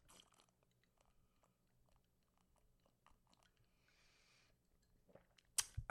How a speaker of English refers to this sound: Oh, he's drinking. You're slurping into the mic right now.